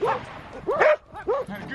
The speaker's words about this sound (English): And the dogs are yelling at him, "We're coming for you! We're coming for you! We really want to come for you!" And the bear is running for his life.